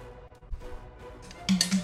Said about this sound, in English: Oh, dice fell.